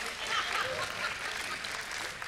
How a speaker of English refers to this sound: That's fine, you can clap, that's fine.